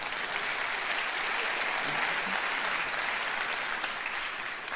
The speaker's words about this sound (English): Yeah, we can clap for Lance.